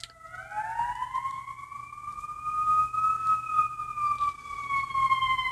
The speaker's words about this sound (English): There's a siren.